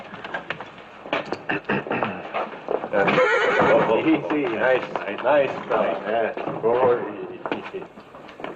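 A horse being swabbed and treated for a shrapnel wound lets out a long, wavering whinny while its hooves clop in an irregular rhythm, sharp knocks starting on their own before the neighing rises loudly over them.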